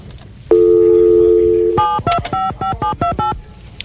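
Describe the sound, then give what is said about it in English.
A steady telephone dial tone hums for about a second, then gives way to a quick run of roughly eight touch-tone beeps as a number is dialed, loud, with no talking. “Let me get this phone here.”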